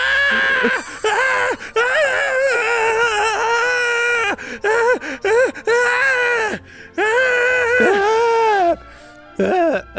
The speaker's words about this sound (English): Screaming is fun. Fake screaming.